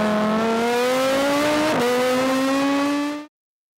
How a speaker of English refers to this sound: You know, I give them two options. My car can go fast or super fast, and you know what they choose. They always want to go super fast.